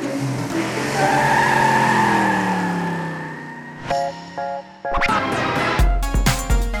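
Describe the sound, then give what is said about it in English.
NASCAR race cars skid through tight turns on a track with long, wavering tire squeals over roaring engines, followed by sharp screeches and bursts of engine noise. “train to safely drive around a track, making tight turns and avoiding the other cars for a long time. NASCAR races can go for over 3 hours.”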